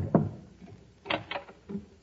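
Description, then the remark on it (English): Several knocks on a door: one solid rap, a short pause, then three more in quick uneven succession, moderately loud, with no one speaking. “Dear, there's someone at the door.”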